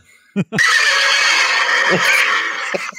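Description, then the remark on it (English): A horse whinnies loudly, a long shrill neigh that quavers and rings for a couple of seconds after a brief snort-like burst. “I don't know how many of those horse whinnies came through, but I looked up and I was muted.”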